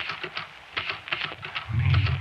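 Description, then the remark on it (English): Typewriter keys clack in a quick, irregular burst of sharp taps, fairly loud, with a low rumble swelling near the end. “Me, said the typewriter.”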